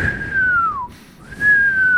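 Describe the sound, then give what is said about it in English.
A thin, steady whistle that slowly glides downward, breaks off briefly, then returns at a higher pitch, clear, like someone imitating air whistling through a slightly congested nostril on each breath in, picked up by a microphone held right by the nose. “No, it's because you had the mic like really close to your nose and you must have like a little bit of congestion and it was just whistling. Every time you breathe in, it was just like.”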